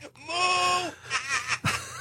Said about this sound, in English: Just, I love the mad cow sound effect. I couldn't find it. I had to find it.